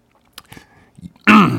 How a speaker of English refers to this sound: I had to clear my throat.